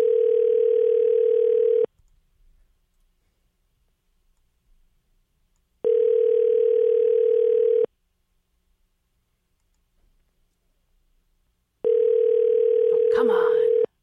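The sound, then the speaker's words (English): An outgoing phone call's ringing tone, a steady electronic purr that sounds three times in a slow on-off rhythm, each ring about two seconds with silence between, ending with a brief click. “Let's give him a call.”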